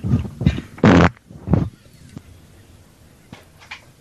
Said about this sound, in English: I'm going to fart on the phone.